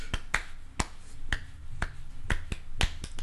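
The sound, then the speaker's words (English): Around nine sharp hand claps land at uneven intervals, some bunched together off the beat, each crisp and bright over a low steady hum, with no voices. “Are you clapping on beat or are you doing some extra claps?”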